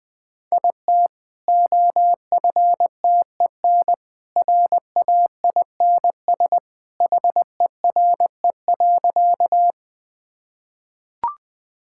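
Morse code sent at a brisk 20 words per minute: a steady mid-pitched tone keyed into quick dots and longer dashes with short gaps between letters, no voices, ending in a faint click.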